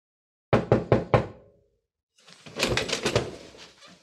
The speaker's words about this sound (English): Who's that rapping his gnarly knuckles on my solid oak?